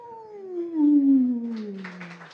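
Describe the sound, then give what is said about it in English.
A voice imitates a coyote's howl: one long, wavering cry that swells and slowly slides downward in pitch, followed by a soft breathy hiss as it fades. “And so all of the great-grandchildren coyotes from that first coyote, when the night sky turns dark, they cry, whoo!”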